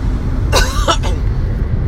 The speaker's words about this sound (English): Excuse me. I'm about to cough.